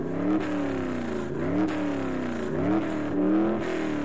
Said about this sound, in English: I hear a car starting. It's a DeLorean! Wow.